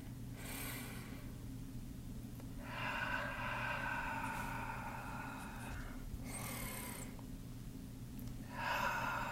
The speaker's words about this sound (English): Let's close our eyes and just focus on our breathing for a moment.